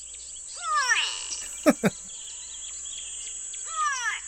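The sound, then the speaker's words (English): Two loud, nasal, downward-sliding calls of a gray go-away-bird, separated by a pause with a couple of sharp knocks in between, over a steady high insect-like whine. “It's a real bird that's named after the sound it makes, which sounds like go away, apparently.”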